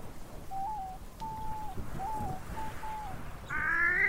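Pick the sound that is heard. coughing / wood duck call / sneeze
wood duck call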